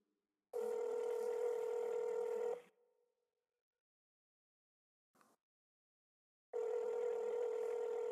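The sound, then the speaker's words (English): A phone line's ringing tone, two long steady electronic buzzes separated by about four seconds of silence, with a brief click in the gap; no one speaks. “It's ringing. I just don't want to answer.”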